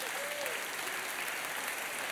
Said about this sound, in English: Amen, church? Amen. Come on, somebody give him a hand clap of praise.